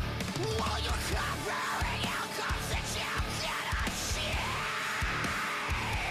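A loud, dense metalcore song with distorted guitars, pounding drums and harsh screamed vocals, starting at full intensity and staying relentless throughout.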